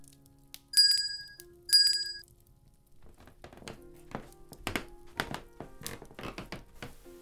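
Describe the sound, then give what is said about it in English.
A shop counter bell dings twice in quick succession, each bright metallic ring lingering briefly, followed by a series of soft thumps and shuffling knocks. “If you have any questions or need help, just ring this bell.”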